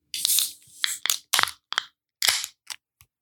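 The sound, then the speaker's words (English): A beverage can is cracked open: a series of sharp metallic clicks and pops mixed with short bursts of fizzing hiss, with no talking. “I just kind of get hops when I open the can.”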